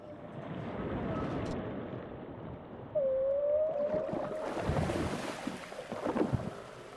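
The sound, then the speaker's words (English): A long, eerie whale call rises and bends in pitch over a low rumbling underwater backdrop, followed by fainter moans and watery noise that swells toward the end. “Can we put the whale sound on again at the end, and then the lovely sponsorship thing after the whale sound?”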